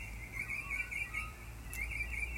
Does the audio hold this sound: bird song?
yes